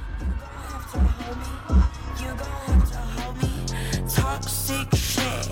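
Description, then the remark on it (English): A large concert crowd roars and cheers steadily, with people in the stands up out of their seats, a dense wash of voices over heavy, evenly spaced bass thumps and music. “All the way back in the stands, people are up out their seats.”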